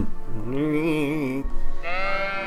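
Two loud sheep bleats in a row, each a wavering, quavering cry, the second higher-pitched and cut off at the end, with no talking.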